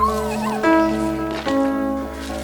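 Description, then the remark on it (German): A stray dog, just shot and injured by a gun, whimpers in drawn-out, wavering whines, with a couple of sharper yelp-like onsets breaking in, all over a steady low background hum. “Er lebt. Der Hund muss sofort zum Tierarzt.”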